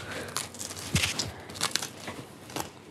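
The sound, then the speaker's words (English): Crisp crunching of someone biting into the crust of a hot, turmeric-yellow bagel spread with cream cheese, a few sharp crackly bursts spaced irregularly over a quiet background. “That tastes like a bagel. That's what it is. Such a good, crunchy crust and such a soft, it's like a custardy interior.”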